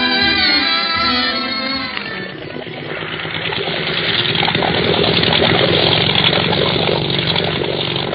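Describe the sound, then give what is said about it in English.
The engine of a motor launch boat in Madeira runs loud, opening with a revving harmonic whine before settling into a steady, rough, continuous roar with no voices over it. “Isn't this a swell boat, Clint? Reminds me of the launches of the secret police.”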